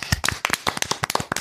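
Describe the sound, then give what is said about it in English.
Hands clap in a quick, slightly uneven burst of about a dozen sharp claps, fairly loud, a short round of applause for whistleblower Peter Buxton with no one talking. “And that's an applause, okay?”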